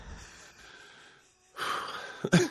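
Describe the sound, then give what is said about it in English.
After a quiet stretch, a harsh fit of coughing away from the microphone and raspy, wheezing breaths erupts, ending in a sharper, louder hack near the end. “So much coughing going on off mic.”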